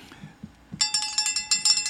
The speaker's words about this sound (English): All right, here's the bell. This is the bell we're going to make do it today